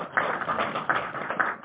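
Audience applause: a dense, steady patter of many hands clapping at once, with a few sharper claps standing out from the wash of noise over the short stretch.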